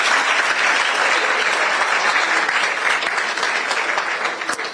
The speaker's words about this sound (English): I do not like the way you people are applauding.